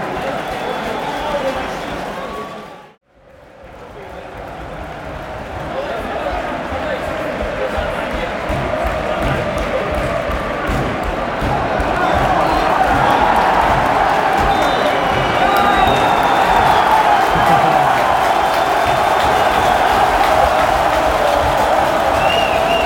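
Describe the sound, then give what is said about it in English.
A football stadium crowd of Estoril fans cheers in a steady, dense roar near the end of the game as player Thiago Araújo gets the crowd up; the roar cuts out briefly near the start, then swells louder and holds through the second half, with voices blending into the noise. “Thiago Araújo is getting the crowd up for the last 3 minutes of the game.”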